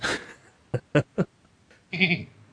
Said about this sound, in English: I'm worried right now. I wish they'd get that damn sheep out of here.